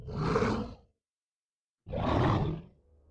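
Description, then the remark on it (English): A big wolf growls menacingly twice late at night in the East Ridge Forest Preserve, each deep, rough snarl lasting under a second, loud, with a moment of silence between the two bursts. “The wolf charged and leapt at me.”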